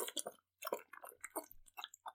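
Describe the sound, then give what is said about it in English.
Loud, wet gulping and slurping from a water bottle: a quick, uneven run of about ten bursty swallows and sucks, with one brief pause and no talking. “I'm trying to drink my water bottle as loud as physically possible.”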